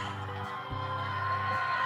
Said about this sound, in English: Yeah, I'm like, okay, people are just cheering. I'm glad that they're cheering. It's wonderful.